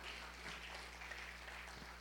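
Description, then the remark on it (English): An audience claps hands for the Lord in a steady, dense wash of applause that sounds somewhat muffled, with a low electrical hum underneath and no voices. “Can you give the Lord a hand clap over that?”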